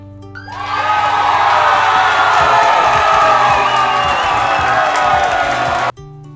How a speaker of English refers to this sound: Okay, I'm back. I hope y'all listened to that little country beat and that little applause.